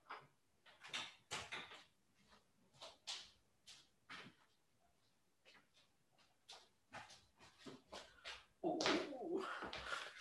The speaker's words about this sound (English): I gotta cover my bird up real quick because he's about to make a ton of noise. Hold on.